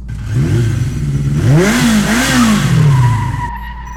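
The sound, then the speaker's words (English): A sci-fi spaceship engine roars to life and revs up and down in rising and falling sweeps over a steady low rumble, loud, with no voices. “Fire up the engines”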